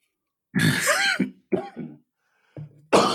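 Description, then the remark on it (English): A person coughs and clears their throat several times in quick, harsh bursts, fairly loud, with short pauses between the fits. “Now I'm over here coughing.”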